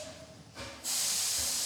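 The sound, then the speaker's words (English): A steam train pulling in and standing perfectly still in front of a house at night, with snowflakes falling lightly around it, releases a loud, sustained hiss of steam that swells suddenly after a brief softer burst, with a faint metallic squeal and low rumble underneath. “From outside, the sounds of hissing steam and squeaking metal.”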